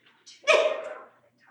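A dog lets out one loud bark, preceded by a brief softer yip, then quiet. No voices.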